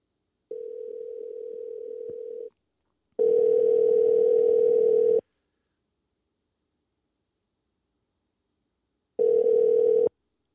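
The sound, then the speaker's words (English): A phone's ringback tone, heard while calling a friend, buzzes in steady two-second bursts separated by silent pauses, three rings in all, the later ones louder and slightly hissy. No one speaks. “So I'm probably going to call to my homegirl. Let me hope she pick up the phone.”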